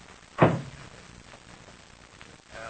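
The door of a plane's rear compartment shuts with a solid thud and is locked, followed by a quiet stretch and a faint rustle at the end. No one speaks.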